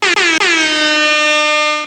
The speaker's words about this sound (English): I normally don't use that air horn so much. I'm just really excited today.